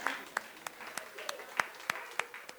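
Steady, rhythmic clapping, roughly three claps per second, over a soft background murmur, like a small audience applauding at moderate volume.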